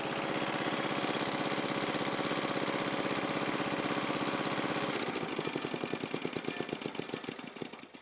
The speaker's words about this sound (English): And that is off of my Simplicity 728 tractor. It was really cold this morning, and it took me so many times to try and start it up.